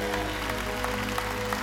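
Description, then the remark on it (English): A crowd claps steadily and loudly, dense overlapping handclaps with a few sharper accents, over sustained organ-like musical tones in the background. “You might as well clap like Sisera's leaving your home.”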